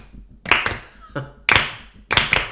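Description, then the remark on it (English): Sharp, loud hand claps tapping out the beat of a 1960s-style song, a quick pair, then a single clap, then another quick pair, with brief quiet gaps and a soft thump between them. “Well, just the beat, like the that. A clap of that.”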